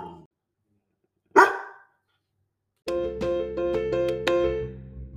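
A dog gives a single sharp bark, then after a short pause launches into a quick run of five or six loud barks blending into a sustained, yelping howl.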